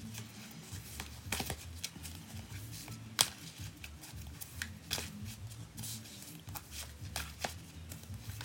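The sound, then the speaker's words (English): Soft, irregular papery slaps and riffles repeat over a low steady hum, a deck of cards being shuffled, with a few sharper taps scattered throughout and no talking. “And I'm just shuffling the cards and tuning in.”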